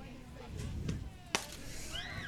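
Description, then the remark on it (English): A single sharp crack of a softball bat as the batter slaps a change-of-speed pitch foul toward the first base dugout, crisp, rising briefly above a steady murmur of crowd noise and faint background voices. “And she slapped that one, got out in front of it, change of speed on that pitch,”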